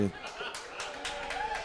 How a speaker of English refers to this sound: Oh, yes, cheer wildly for your correct answers.